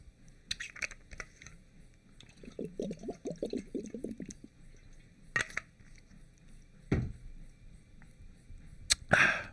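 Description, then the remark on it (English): Someone drinks water during a water break in a quick run of rhythmic gulps, framed by sharp clicks and clatter like a bottle being opened and set down. No one speaks. “Sounds like a time for a water break. Water break.”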